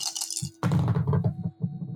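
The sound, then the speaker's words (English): Four dice, rolled for a body roll in a game, rattle and tumble across a hard surface in a quick burst of irregular clicking clatter, then settle with a few last taps. No one speaks. “All right, now to make a body roll. So I have 3 slots on my body and I have 4 dice.”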